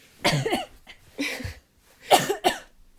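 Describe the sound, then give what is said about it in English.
A person coughs about four times in quick, uneven bursts, fairly loud, with short pauses between them and no talking. “Mamma mia, this is making me cough.”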